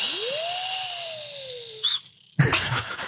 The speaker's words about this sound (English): You have been given those lip kazoo things. They will be your buzzers.